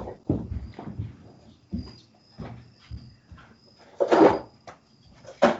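A female dog plays with a noisy toy, making irregular knocks and rattling clatters, with a louder scraping burst near the end. No one speaks.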